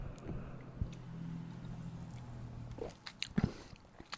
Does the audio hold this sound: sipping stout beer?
yes